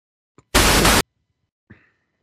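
A sudden, loud half-second burst of harsh radio static cuts in and stops abruptly, with faint crackles and blips just before and after it.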